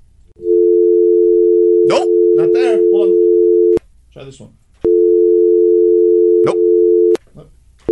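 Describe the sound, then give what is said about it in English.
A steady telephone dial tone hums loudly, cutting out and restarting a few times as phone lines are opened to check for callers, while a man talks briefly over and between the tones. “Open up the phone lines”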